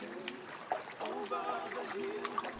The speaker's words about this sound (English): It's early morning, Sunday. A congregation wades slowly into a sun-dappled river. Weeping willows sway on the banks.